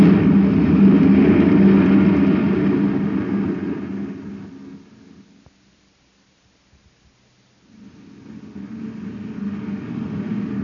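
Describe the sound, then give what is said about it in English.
A maintenance truck's engine roars loudly as it speeds past, then fades away into near silence, before another engine rumble swells back in toward the end. “Wow, that guy drives like a maniac. Did you see him whiz past us? It's a maintenance truck.”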